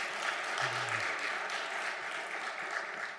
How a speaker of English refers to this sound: At the end of the service today, we're going to receive 8 new members into our church. Praise God. You can clap on that.